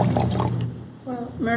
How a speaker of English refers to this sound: Which leads us to the next wine. We're pouring comparison Merlots.